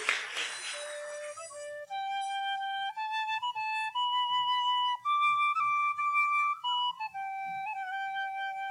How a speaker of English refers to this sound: Child, is that you whistling? Trying to stir up trouble, are you?